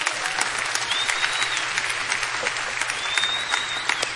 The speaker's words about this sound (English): 20,000 people are going to be in heaven because of what you just did in the last 12 minutes. I think that's worth cheering for.